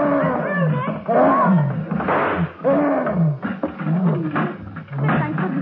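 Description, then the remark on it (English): A gorilla in its cage at the Idle Hour Amusement Park roars furiously while attacking and being shot with revolver bullets, in a loud, unbroken series of rough, bellowing bursts, the pitch swooping up and down as the angry cries overlap, with no talking. “In the gorilla's cage at the Idle Hour Amusement Park, Nick and Patsy realize that revolver bullets may slow up the attacking monster, but never stop him.”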